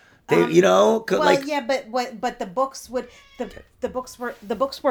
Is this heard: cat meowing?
yes